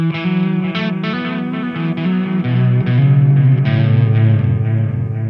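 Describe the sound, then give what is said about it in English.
An electric guitar plays sustained, overdriven chords through an analog delay pedal, a Memory Man copy, its repeats smearing each note into a thick wash. Loud and steady, with no one talking. “We have I think this one in particular is a Memory Man copy.”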